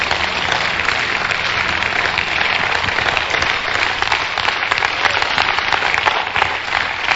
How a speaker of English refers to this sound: In Jesus' mighty name, amen. Clap your hands.